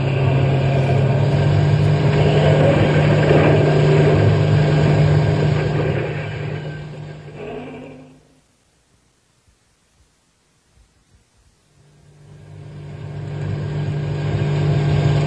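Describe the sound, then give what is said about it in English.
A truck engine roars loudly and steadily as it is driven as fast as it will go to get out of a park, cuts out abruptly midway into near silence for a few seconds, then swells back in. No one speaks. “Step on the gas. You'll get out of the park and then we can think about who to do next. Go faster.”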